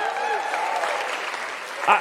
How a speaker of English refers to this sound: Come on, we serve a miracle working God. Give God a big clap of praise.